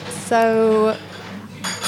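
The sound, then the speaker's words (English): Dishes and cutlery clatter, with a sharp clink followed by a steady ringing tone that lasts under a second, then a brighter rattle of crockery toward the end. “And they're banging those plates.”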